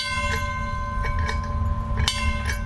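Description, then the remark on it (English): A trolley bell clangs several times at uneven intervals, its bright ringing tone lingering between strikes, over a steady low rumble of the moving car. “Yeah, if there's enough time when we come back, we take the young children and put them up in the front, let them blow the whistle, ring the bell.”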